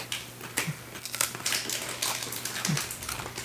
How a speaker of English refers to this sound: That's good. Not as sweet as the apricot one, but it's good. Crunchy. Wait, corn cake?